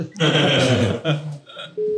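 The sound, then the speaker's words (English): A drawn-out voiced sound and a short gap come first, then a single steady telephone beep signalling the start of a call: one clear, mid-pitched electronic tone lasting about a quarter second at the end. “The call will start at the beep.”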